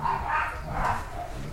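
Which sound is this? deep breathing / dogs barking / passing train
dogs barking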